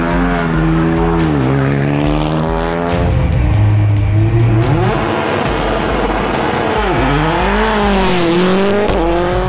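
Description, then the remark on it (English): A loud race car engine revs hard and climbs through several gear changes, with a harsh burst of tire squeal and skidding in the middle before it accelerates again. “I actually came to take pictures, and they told me I could ride in the car.”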